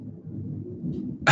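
thunder

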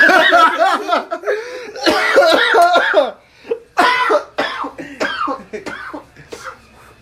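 coughing mixed with laughter

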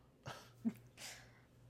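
sneeze

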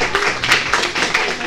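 round of applause

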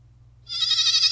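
goat bleating

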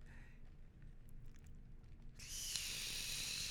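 sipping a drink

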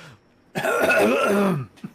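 throat clearing

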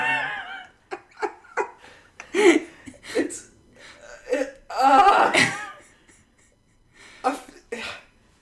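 fart

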